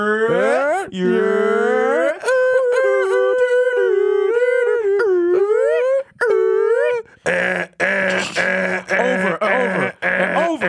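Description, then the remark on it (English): A voice imitates the repeating car alarm of an '02 Nova cycling through its patterns: loud wailing rises and falls, warbling steady tones, then a harsher stretch of rapid repeated honks and chirps. “Why the fuck do you have the repeating car alarm on a 02 Nova, my nigga?”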